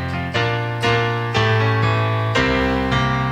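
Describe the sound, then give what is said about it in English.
A short quiz show jingle plays on its own: bright, sustained chords shift in quick steps roughly every half second, loud and steady throughout with no talking over it. “Okay, so can we hear the whole jingle, please?”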